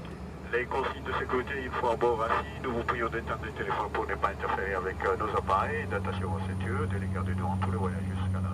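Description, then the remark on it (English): A steady, low airplane engine drone hums beneath a man talking throughout, on a daylight flight over the water between Anjouan and Mayotte; the constant cabin rumble becomes more noticeable in the second half. “So going on this flight is actually cheaper than going on the Kwasa Kwasa illegal fishing boats.”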